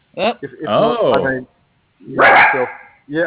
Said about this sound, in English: I'm just trying to quiet my dogs. Hopefully they'll stop barking.